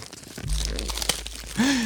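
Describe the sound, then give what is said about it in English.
Crackly crinkling of wrapping paper as a present is slowly unwrapped and pulled open, with a sharp tearing snap midway and a brief voiced murmur near the end. “He's not trying to save the wrapping paper later.”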